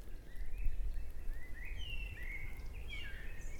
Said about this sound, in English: listen to that blackbird stuff now.